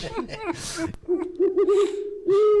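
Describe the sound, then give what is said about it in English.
A person mimics an owl with drawn-out, wavering hoots, fairly loud, broken by breathy bursts and voiced sounds at the start. “That was an owl.”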